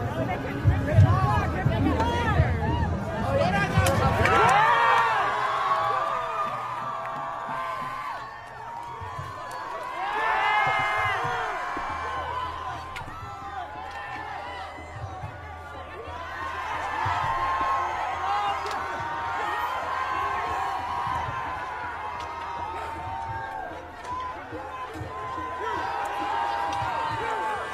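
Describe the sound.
A large pro-Hamas protest crowd in New York City, tearing down American flags, murmurs and shouts in overlapping waves, with scattered voices rising out of a continuous, moderately loud babble and a low steady hum running underneath.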